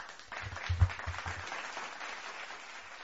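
A burst of audience applause, many hands clapping at once in a dense, steady patter that swells early, then slowly thins and fades toward the end.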